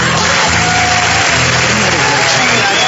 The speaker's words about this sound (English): Can't believe you're all clapping out there, for crying out loud.